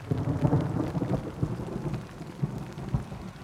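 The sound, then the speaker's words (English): Steady rain pours down while low thunder rumbles continuously underneath, a dense summer evening thunderstorm (yudachi), with no voices. “One of them is summer evening thunderstorms, or yudachi in Japanese.”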